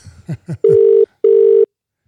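An outgoing call's ringback tone: a few quick falling blips, then two steady, loud, mid-pitched buzzing tones in a double-ring pattern separated by a short gap, followed by silence.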